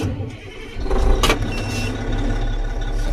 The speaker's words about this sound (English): That'll be the cat dump truck getting fired up then.